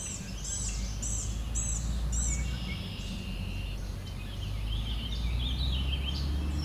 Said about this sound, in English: There we go, just caught warbling vireo. The bird just needed to be louder.